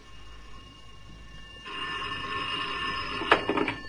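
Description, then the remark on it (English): A telephone bell starts ringing partway through, a steady metallic trill that swells into a louder, rattling burst near the end. It is loud, with no one talking. “Give me the phone.”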